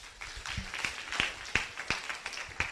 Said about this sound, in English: Thank you. Clap for them.